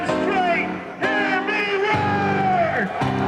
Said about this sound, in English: People screaming and brawling and trying to tear down public infrastructure and attack the police.